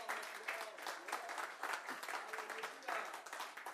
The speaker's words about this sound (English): Clap your hands if you know that's true.